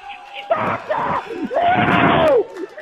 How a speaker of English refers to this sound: Oh, Superfan, the crowd here is going insane. Superfan, unbelievable.